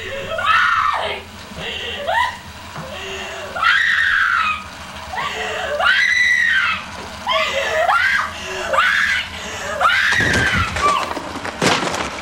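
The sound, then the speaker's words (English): A woman screams again and again in long, breathy, wavering cries, her voice rising and falling between gasps, loud; the full ending scream from a horror movie. “Well, we didn't give her full ending scream clip its rightful hearing.”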